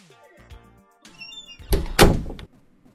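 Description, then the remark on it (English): The right-hand of two doors, leading into a bar inside a temple, is opened: a few soft low thunks from the latch, then a louder, rough burst of scraping and rattling as it swings, fading quickly to quiet. “We should probably try the right door. I don't think we're getting in through the other one.”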